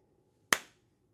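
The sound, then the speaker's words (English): A single sharp hand clap rings out against a quiet background, with a brief bright decay and no voices. “You ever clap and it sounds like your hands are small?”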